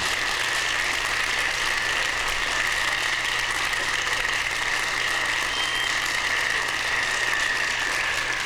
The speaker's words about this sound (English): I like that clap. The clapping is cool.